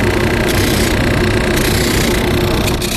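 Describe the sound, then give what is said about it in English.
A rotating belt sander sands heads and bodies made of aged wood, its motor giving a loud, constant whirring roar with a broad, gritty hiss layered on top and no pauses or changes in speed. “The first is a rotating belt sander. Yeah, watch, that's going to spin, so don't get too close to it.”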